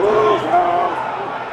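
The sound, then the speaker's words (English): A large crowd at the Capitol, climbing over scaffolding and stacks of folding chairs, shouts "whose house, our house" together in a loud, continuous roar of overlapping voices, with a few raised voices standing out, like an outdoor rally chant. “They were kind of climbing all over the scaffolding and the stacks of folding chairs, shouting like, whose house, our house.”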